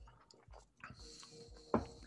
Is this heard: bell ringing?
no